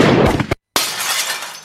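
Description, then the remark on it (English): A loud gunshot bang and crash of a large plate glass window shattering, a split-second of silence, then a bright shower of glass shards clattering and tinkling down, loud, with no voices. “The moose! Gone! The plate glass window blown to bits!”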